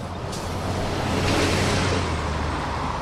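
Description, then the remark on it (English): A steady, broad roar of rushing water from the Winooski Falls on a river in Winooski, loud and constant, with a low rumble underneath and no voices. “Nearby are the Winooski Falls, the power source for the mills worked by many French-Canadian immigrants”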